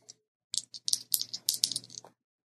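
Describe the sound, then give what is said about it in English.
Dice for a game roll (roll plus superior) clatter and rattle across a hard surface in a quick burst of sharp clicks lasting about a second and a half, moderately loud, then stop, coming up 9. “The dice work this time.”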